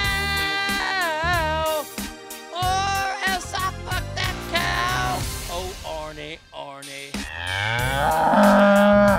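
Loud cow mooing: a run of drawn-out, wavering moos follow one another with short breaks, some rising and falling in pitch, filling the whole stretch with no other sounds.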